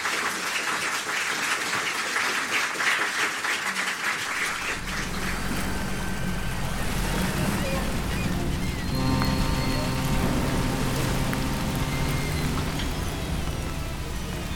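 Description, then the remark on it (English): Steady rain hisses throughout. Partway in, a deep low rumble joins beneath it, and a faint tonal hum drifts in later. No one speaks. “It was still raining when I reached the coast of England.”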